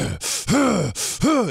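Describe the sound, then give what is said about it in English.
A voice imitates the heavy, labored breathing of lineman Larry Allen pulling during a football play: two cycles of loud, hissing inhales, each followed by a strained, groaning exhale, in a steady rhythm with no other sounds. “I can hear him breathing. He's a dump truck, dude. You can hear him breathing. Right? So I start breathing.”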